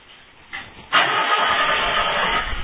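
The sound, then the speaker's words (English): A Ford Galaxy car engine cranks briefly as it is started with a key, then catches and roars to life, settling into a loud, steady running rumble. No one speaks. “And he was absolutely certain that if he ever saw another car like this, it was a Ford Galaxy, that he could walk up with the key in his pocket, put it in, and start it up.”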